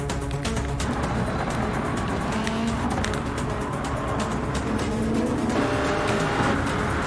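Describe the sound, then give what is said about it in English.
Racing cars in the Gran Turismo video game roar continuously, engines whining up and down in pitch with bursts of tire squeal, loud throughout, with no one speaking. “I mean, the thing that I like about Gran Turismo, too, is they spend so much time with the cars and stuff, but they do not skimp on the backgrounds either, though.”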